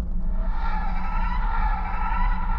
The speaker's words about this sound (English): A second boom of the foghorn came